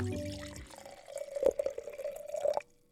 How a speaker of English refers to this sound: All right, we're going to pop the cork. Or unscrew the cap. Yeah, unscrew the cap. Pour it in that glass.